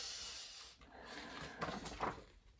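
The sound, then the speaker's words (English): Soft, breathy sniffing, a few short airy inhales with two slightly sharper sniffs near the end, no voices. “He followed his nose and ran. Can you sniff out, Bo?”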